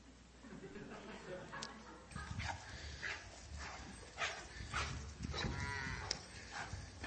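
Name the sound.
cows mooing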